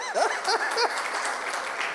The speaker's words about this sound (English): Let's encourage you with a hand clap. Come on now.